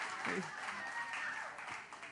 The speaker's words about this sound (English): Yeah, I noticed all the women are clapping.